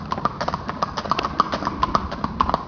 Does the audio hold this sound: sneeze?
no